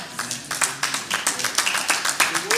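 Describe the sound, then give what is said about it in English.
A crowd claps steadily in a dense, crackling patter of many hands, with sharper bursts rising roughly every quarter second and a few faint voices underneath. “And the crowd went wild.”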